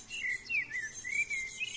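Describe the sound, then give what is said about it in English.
Birds sing in the early morning in a quick run of high, bright chirps and trills that rise and fall, steady, with a faint hiss of background behind them and no voices. “The birds singing reminded me of what the medicine woman had said.”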